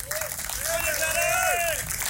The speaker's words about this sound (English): So can we have another round of applause?